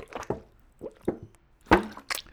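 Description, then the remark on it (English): Someone drinks water in a few quick gulps, with soft wet plops and swallowing sounds spaced irregularly, fairly faint and with no talking. “I'm going to have some water.”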